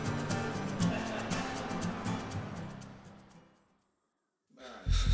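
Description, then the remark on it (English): A man gasps for air, shivering, in long, shaky, trembling breaths that fade out, then after a brief silence a sharp new gasp breaks in, fairly loud. “He's gasping for air. Sounds like he's shivering.”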